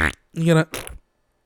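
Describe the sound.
A voice imitates a wet fart: three buzzy, sputtering bursts within about a second, the middle one longest and loudest, followed by silence.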